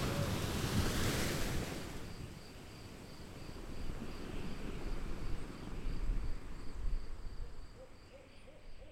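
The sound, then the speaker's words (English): Waves crash against cliffs in a steady, rumbling surge that swells and recedes, with wind hiss and a faint, evenly repeating high call in the background. No one speaks. “And sometimes, if I was particularly quiet and I was listening very closely, I could hear the sounds of waves crashing against the cliffs.”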